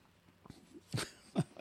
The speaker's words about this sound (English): The background noise that you're hearing right now is gummy bears.